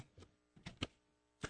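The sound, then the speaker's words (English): A folded paper containing a name being unfolded, heard as a few short crinkly rustles and crackles spaced unevenly apart, soft, with no voices. “Okay, ladies and gentlemen, I am opening the paper containing the name of today's mystery guest.”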